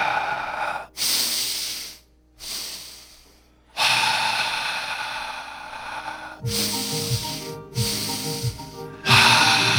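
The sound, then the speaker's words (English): Deep, heavy breaths drawn in and pushed out in a steady rhythm, loud, with brief quiet pauses between them and a raspy, snort-like edge on some exhales. “Keep breathing in and out.”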